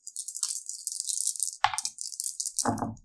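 Dice rolled for an attack in a tabletop role-playing game rattle and clatter across a table in a bright, chattering stream of small hard clicks, with a sharp knock partway through and a duller tumble at the end.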